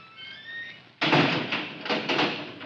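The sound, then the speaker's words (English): A heavy vault door creaks on its hinges, then shuts with a loud slam, followed by a few rumbling clunks as the switch-operated locking bolts slide into place. “I've got to change my key to the inside of the door, or I'll never get out when that switch locks it.”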